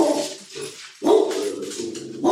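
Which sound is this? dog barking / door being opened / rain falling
dog barking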